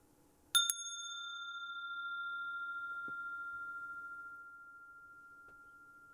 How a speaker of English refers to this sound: I will begin, actually, with the sound of the bell, and at the end it will also close with the ring of the bell.